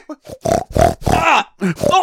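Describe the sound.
A person voicing a pig character imitates a pig with a run of loud, throaty grunts and snorts in short bursts, about six of them over two seconds, with no other talking.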